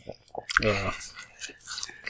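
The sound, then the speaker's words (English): Moist chewing with irregular crunchy bites throughout, interrupted early by a short voiced murmur from the man eating. “So his problem is that he's chewing.”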